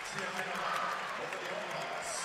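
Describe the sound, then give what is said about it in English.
An arena crowd cheering after a volleyball match: a dense, steady roar of many voices and clapping that holds at an even, loud level for the whole stretch, with a brief whistle-like tone midway. “If you are a volleyball fan, and I will shut up and let this crowd tell you what they think about what they saw tonight.”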